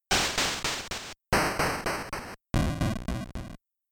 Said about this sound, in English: I wanted to look closer at that echo and recreate it. So I did, and I applied it to the noise channel.